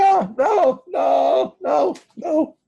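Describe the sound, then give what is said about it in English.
A man's voice imitates a man suddenly crying out in a general shriek, letting out four or five strained, wavering cries in quick succession, each a short burst. The cries are loud, with only brief gaps between them. “Just a general shriek of...”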